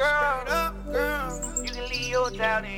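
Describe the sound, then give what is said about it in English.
Birds chirping and warbling inside a piece of music, their bright calls layered over a steady low bass line, continuous and fairly prominent throughout. “I don't know what the birds for, but I never understood what the birds for.”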